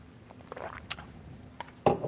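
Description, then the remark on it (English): Someone takes a quiet sip of water: soft wet mouth sounds and a few brief slurping clicks, ending in a slightly louder gulp, with no talking. “This is going to be my first sip of water and the first of many, I'm sure.”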